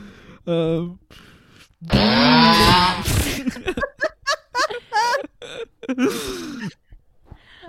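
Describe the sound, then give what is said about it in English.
Someone vocally imitates a chainsaw, a loud buzzing rev that rises and sputters, followed by a string of short voiced bursts and another revving, with laughter-like gasps mixed in. “Can you do chainsaw effects so I'm not the only one?”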